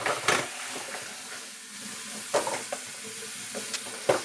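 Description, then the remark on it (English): A mixing bowl left over from the night before being washed out with soap and water: a steady, hissing swish of water and scrubbing, broken by a handful of sharp clinks and knocks against the bowl. No one speaks. “So in a crisis like this, we're going to wash out a mixing bowl that I had from last night and pouring some soap and water.”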